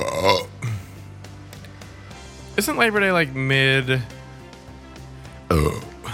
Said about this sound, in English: Quit burping. I can't help it.